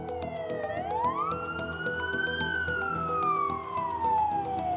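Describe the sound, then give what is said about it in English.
An ambulance siren wails loud, its tone sweeping up and then gliding slowly back down in one long, continuous cycle, with no voices over it. “An ambulance took her to the hospital.”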